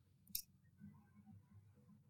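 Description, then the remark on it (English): A single sharp mouse click, short and crisp, snaps out once near the start over a low, steady background hum; no voices. “Or are you just going to do a mouse click for us?”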